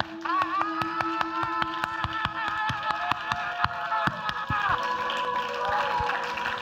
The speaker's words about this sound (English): And I got some hands that can clap.